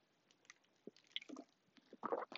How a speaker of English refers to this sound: Okay, I'm going to drink some water now. So you're probably going to hear me, you know, swallow water. Might sound a little gross. I apologize now.